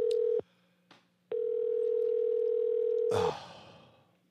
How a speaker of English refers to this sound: I wonder if he's going to just not answer the phone now to punish me.